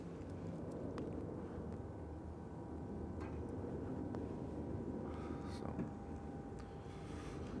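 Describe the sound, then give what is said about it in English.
An airplane flying overhead in Tampa, Florida makes a steady, low droning rumble that holds for the whole stretch, fairly quiet, with a few faint clicks and taps. “There goes a plane in the background.”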